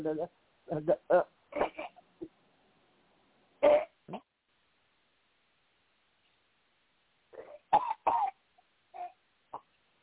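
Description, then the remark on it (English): Several short, harsh, fairly loud coughs come in clusters with pauses between them, with a few throat-clearing sounds mixed in, as a woman coughs when told to during a healing prayer. “Now cough one more time and then take a deep breath and allow the Holy Spirit to come in.”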